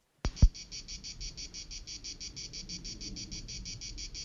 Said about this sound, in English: Crickets. Really? Oh, I thought it was someone peeing on an electric fence. No, I think you'd hear some screaming too. Yeah, he said it was just a strange cricket. That is a very strange cricket.